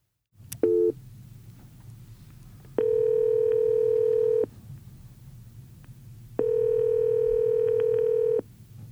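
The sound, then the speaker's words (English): A short telephone beep, then two long ringback tones as a phone call is placed, each about two seconds, separated by a pause, over a low steady hum on the line. No one speaks. “He's on vacation this week, so I spoke with him by phone.”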